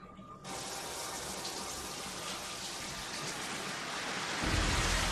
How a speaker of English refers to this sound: Oh, she's like, ah, water! Oh, God, I forgot. I'm in the shower.